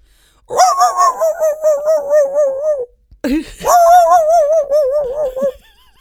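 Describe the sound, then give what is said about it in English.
A person imitates a dog's bark, going 'arf' in two drawn-out, wavering vocal yelps, each lasting a couple of seconds with a short pause between, loud, the inflection yodeling at the end, almost howling. “Like, you guys think I'm just doing an impression of a dog.”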